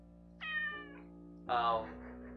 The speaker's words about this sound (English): Sorry, that's my cat for hearing. His name is Bucky. If you wish to give him a heads up, his name is Bucky. Alright. Calm down, cat.